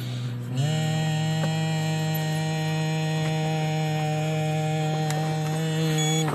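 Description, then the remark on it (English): Someone blows and hums steadily into an ignition interlock breathalyzer fitted to a BMW car after a DUI: one continuous low hum with breathy airflow, starting after a brief pause and holding for about six seconds, with no talking. “Okay, so they want me to blow and hum at the same time.”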